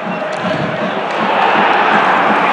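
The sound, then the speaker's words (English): A packed football stadium crowd at a Hearts match roars and screams continuously, a dense wall of many voices that swells slightly louder toward the end with no pauses. “They're screaming for Rudy Scourge”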